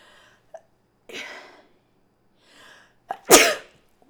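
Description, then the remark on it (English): A buildup of a few sharp inhales, then one loud, explosive sneeze near the end, with quiet pauses between the breaths. “And, oh, I gotta sneeze.”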